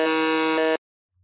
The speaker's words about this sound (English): you have buzzed in first.